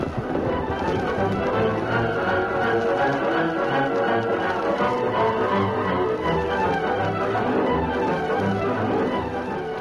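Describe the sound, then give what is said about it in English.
The horses Silver and Scout gallop away as their riders, one of them Tonto, ride back to camp, in a steady, loud, driving rhythm of hoofbeats that keeps up without a break for about ten seconds, with no voices heard. “Here are the horses.”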